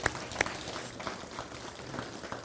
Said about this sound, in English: So let's give them a round of applause for making that happen.